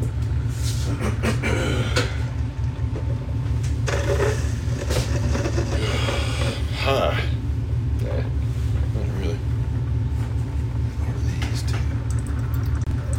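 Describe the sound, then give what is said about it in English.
A truck engine idles with a deep, steady rumble that fills the low end throughout, vibrating a house and making its floor rumble, while a person murmurs briefly over the constant drone. “My truck is vibrating the house. The floor is rumbling.”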